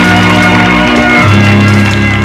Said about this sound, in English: Let's give God another round of applause for what he's already done.